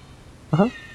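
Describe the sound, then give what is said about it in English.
A single short cat meow, fairly loud, with a rising pitch, set against a quiet background with no talking. “Can we get like a roundabout opinion from the Cat Kingdom? What are they thinking? Oh, this one likes it.”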